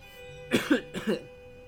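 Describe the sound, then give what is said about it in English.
Two harsh coughs in quick succession from someone with bird flu, each a double hack, fairly loud over a faint steady hum, with no talking. “The flu, lungs full of mucus, sniffles, coughing.”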